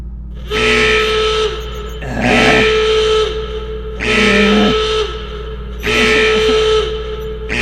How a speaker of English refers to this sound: Computer! Silence alarms!